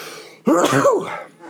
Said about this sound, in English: And there was a sneeze.